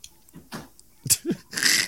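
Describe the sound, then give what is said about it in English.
A single sneeze: a few short breathy catches and a brief voiced rise, then a loud, hissing burst of air at the end. No one speaks. “Bless you.”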